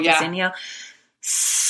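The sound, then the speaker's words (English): A short voiced sound trails into a soft hiss, then after a brief silence a person doing the snake breathing exercise exhales a loud, steady, high-pitched hiss through the teeth, like a snake. “And have this like exhale where you make the hissing sound.”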